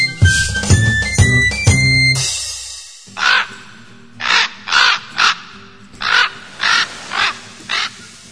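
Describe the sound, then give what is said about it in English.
A short burst of music gives way to a raven cawing about eight times, harsh and loud, the calls coming in uneven pairs and singles with brief pauses between. “The raven on his shoulder speaks of dark and evil things.”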